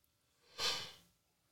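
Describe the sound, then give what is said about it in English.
A single breathy yawn, fairly quiet, swelling suddenly into a hissing exhale that fades away over about half a second, with no talking. “I had to yawn from yonder.”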